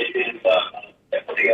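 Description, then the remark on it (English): Muffled, tinny voices from a caller's radio come through a phone line during a call-in, fairly loud, in two bursts separated by a short pause. “And get you to turn off your phone. I mean, the radio, please.”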